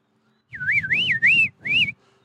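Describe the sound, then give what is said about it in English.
A finch-like call whistled in two warbling phrases, the pitch rising and falling smoothly, with a low rumbling noise underneath. It sounds like a person whistling to imitate the bird. “It's a beautiful little bird. I think it's a finch.”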